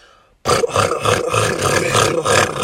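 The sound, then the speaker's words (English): After a brief silence, someone abruptly launches into a loud, gravelly roar mimicking a big truck engine, a sustained rumbling growl with slight pulsing that holds steady for about two seconds. “This is how your truck would sound.”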